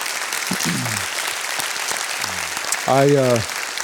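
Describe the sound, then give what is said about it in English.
A crowd claps steadily and densely throughout, a continuous wash of applause honoring men and women who gave their lives for freedom, while a few voices call out over it, one louder shout rising near the end. “Many of you, you can give them applause, yes.”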